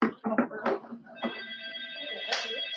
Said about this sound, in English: Yo, bro, you keep ringing the wrong bell.